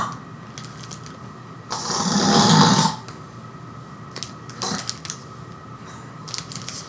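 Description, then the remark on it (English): A person imitates the snoring of someone asleep behind a door, which sounds like choking on his own spit: one loud, rasping, throaty snore of about a second, followed by quiet stretches with a few faint clicks and rustles. “They're back asleep, are they?”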